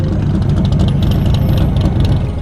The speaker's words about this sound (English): Three days later, driving a derelict truck, Lila's unreliable mother, Big Mama, arrived.